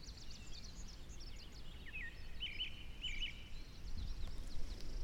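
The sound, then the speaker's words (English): Two robins sing faintly, repeating short chirping triplet phrases in small bursts over a steady low background rumble, with no one talking. “There are two robins echoing what we're saying.”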